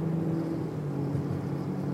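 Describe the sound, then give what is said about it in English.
A heavy truck rumbles loudly outside, its deep engine drone steady and continuous throughout, with no talking over it. “That is a very loud truck.”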